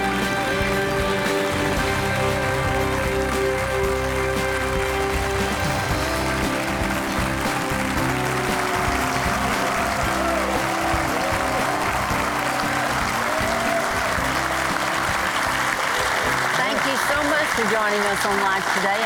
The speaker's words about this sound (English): Yeah, and they're not only clapping, they're smiling. Yeah, they look happy.